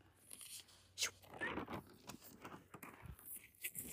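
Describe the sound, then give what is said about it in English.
Paper rustles and crinkles in a quiet, irregular series of soft crackles and brief shuffling bursts, with no one talking. “Sorry for my rustling of papers and my nose sniffles.”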